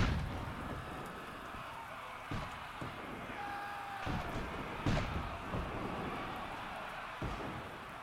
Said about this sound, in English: Two Union gunboats fire their guns on Confederate lines all night, their reports echoing the thunder.